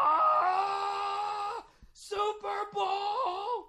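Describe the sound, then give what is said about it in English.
A man loudly imitates an excited sports fan yelling in a sports bar after Ray Rice ran 85 yards for a Ravens touchdown: one long sustained shout, a quick breath, then two more drawn-out, wavering cries, with no other sounds. “The first play of the game, they handed the ball off to fucking Ray Rice, and he ran 85 yards for a touchdown, and this guy just went, oh!”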